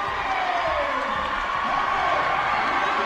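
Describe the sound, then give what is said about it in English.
A dense, steady roar of the Hellgate crowd cheering at a crosstown basketball game against Sentinel, loud and continuous for the whole stretch, with overlapping shouts and voices blending into one wash of noise. “Now he's firing up the Hellgate crowd on the eastern side. You can hear him.”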